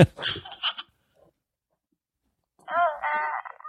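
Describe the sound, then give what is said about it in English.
A Baby Yoda toy, squeezed by the hand, gives two short electronic cooing bursts split by a pause of silence: the first rough and buzzy, the second a higher, warbling, tonal coo that trails off. “It's a baby Yoda that makes little cooing sounds and has music.”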